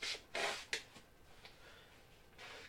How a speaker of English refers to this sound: I'm blowing my nose. It can sound great on the podcast for the Spotify.